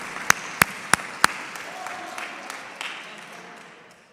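Four loud, evenly spaced claps ring out over a wash of scattered audience applause for the student supreme captain, which keeps going and slowly dies away.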